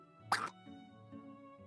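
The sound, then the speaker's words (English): A helmet falling into a hole lands in an open space below with a single short, bright clink, distinct, then fades into a low steady hum with no voices. “But at that moment, you all notice the helm fall in. And there's a pause. Just a briefest of pause. Clink, clink.”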